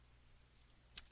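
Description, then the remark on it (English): A quiet steady hum, then near the end two sharp mouse clicks in quick succession as a link next to a date is clicked, with no talking. “So then we have another date with a link next to it, which I'm clicking on.”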